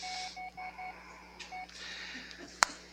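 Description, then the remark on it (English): A mobile phone that was left switched on gives a quick series of four short electronic beeps, then one more after a pause, over a low steady hum. A sharp click follows near the end. “I forgot to turn off my phone.”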